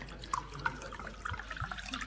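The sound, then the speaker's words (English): Sherry glugs and splashes into a glass in a steady two-second pour, with small bright gurgles rising over a soft liquid hiss. No one speaks. “Here, let me get the sherry for you. I take it you'd like a large one.”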